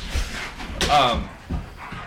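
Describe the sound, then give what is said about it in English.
Dogs and bears fight in a video game: a sharp dog bark rings out amid scuffling and thumping noises, with a general busy commotion running underneath throughout the brief moment. “This is why, like, bears and dogs shouldn't have berserk, man.”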